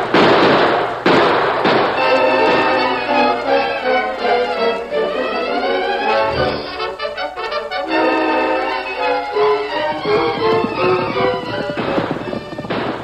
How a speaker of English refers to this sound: Those shots are coming from the Indian camp, Thundercloud.